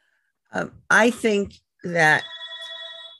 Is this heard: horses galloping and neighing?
no